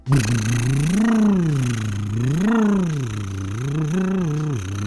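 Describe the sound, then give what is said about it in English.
A continuous voiced lip trill buzzes for about five seconds, its pitch sliding smoothly up and down in rolling waves, steady and fairly loud, with no talking over it. “You've probably seen the or heard people do the buzzing or the flapping of the lip thing.”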